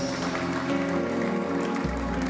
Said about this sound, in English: Give the Lord a clap offering in the house.